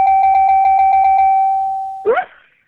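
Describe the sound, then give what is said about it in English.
An electronic doorbell rings with a bright, steady tone that pulses rapidly for about a second, then holds and fades, followed by a single short, sharp bark-like yelp. “Try the doorbell.”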